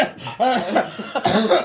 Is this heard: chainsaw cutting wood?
no